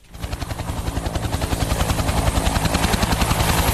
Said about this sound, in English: Military helicopters have been scouring the flooded streets and airlifting residents to a sports centre being used as a temporary shelter.